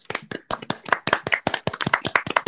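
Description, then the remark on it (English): A short burst of audience applause for a baseball player who hit two switch-hit home runs in Sunday's game: dense, uneven hand claps layered over one another, fairly loud and steady for a couple of seconds, with no voices. “So, applause to that.”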